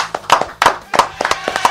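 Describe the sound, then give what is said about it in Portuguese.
A quick burst of hand clapping, sharp crisp claps in an uneven rhythm, loud and steady across the short stretch, with a hint of voices faintly underneath. “Palmas, nossa, é verdade.”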